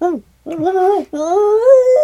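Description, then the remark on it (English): A person imitates a coyote howl with their voice: a short yip, then two longer, rising wavering howls in quick succession. The sound is loud and alone, with no other sounds. “So we hear them howling across the lake, and then all of a sudden we hear probably 20 yards from our tent the callback.”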